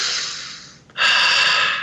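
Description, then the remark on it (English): Two audible breaths of 4x4 box breathing with no talking: an airy exhale that tapers off, a brief pause, then a strong, sharp deep inhale that continues to the end. “And I'd breathe. I'd do the box breathing 4x4.”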